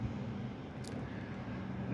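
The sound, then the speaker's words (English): Rainy Taco Bell parking lot in Deptford, New Jersey, with cars going by and seagulls flying around: a steady, low traffic rumble under an even wash of hiss, with one brief sharp tick partway through and no voices. “It's a rainy day. We've got some seagulls flying around. Cars are going by.”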